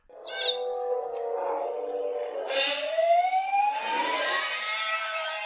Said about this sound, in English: That's the original. It's like okay. A siren and a man screaming.